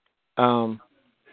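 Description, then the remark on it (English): A single short, sharp sneeze bursts out, voiced and abrupt, then cuts off into quiet with no talking around it. “Bless you.”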